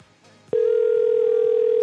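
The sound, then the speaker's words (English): A steady, loud telephone line tone starts abruptly after a brief quiet moment and holds unbroken at a single pitch, continuous, with faint background sounds beneath it, during a phone call to a Google Fi wireless number. “If someone doesn't get me a working number, I'm just going to leave.”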